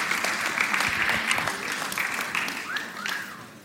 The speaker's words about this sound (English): Did you hear that? You got a wolf whistle. Amazing.